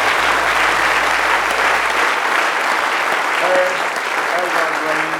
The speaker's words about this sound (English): Give him a good hand clap of praise this morning.